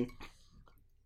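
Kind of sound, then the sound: household object, ice cubes clinking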